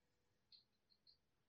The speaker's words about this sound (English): Guys, kill the effing typing. You know the rules.